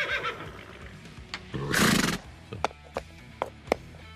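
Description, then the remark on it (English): A horse, the racehorse Medina Spirit, neighs: a wavering whinny followed by a loud, breathy blast, then several sharp knocking clops at uneven intervals. No one speaks. “Yelling at reporters on the way out.”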